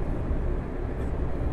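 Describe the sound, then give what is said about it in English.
A car idles on a chilly day while warming up, its heater blower running: a steady low rumble mixed with constant fan hiss, even in level, with no voices. “My car is already warming up a bit though, which is quite nice.”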